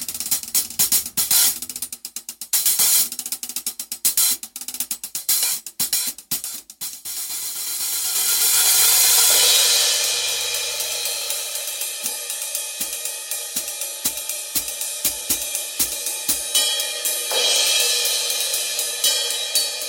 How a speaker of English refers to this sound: So in the video that will be linked, you'll hear the hi-hats, the B8 ride crash, and then the B20 stuff. So it's the hi-hats, the B8 ride, the splash, the crash, the B20 ride, and then the China. So let's check it out. Let's give it a listen.